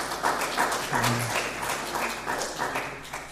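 A crowd applauds steadily, a dense wash of clapping that holds at an even level for a few seconds, with a brief tonal sound mixed in partway through.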